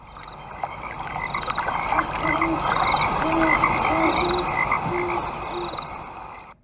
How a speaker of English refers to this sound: What's nuts is they like bite them and flip them. This is like frog MMA. I think this is where the sport of MMA started. It had to have. This is wild. Wow. Yeah, it really is. I wonder how much it hurts.